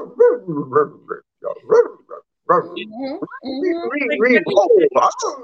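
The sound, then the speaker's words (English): A husky vocalizes in a lively string of yips, short barks and warbling, whine-like howls, with only brief pauses before a longer, continuous stretch of chattering sounds. “When your husky is...”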